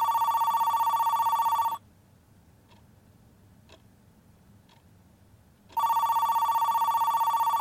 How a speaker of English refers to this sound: Yeah, so what are we supposed to do in the meantime? Just sit around waiting for the phone to ring?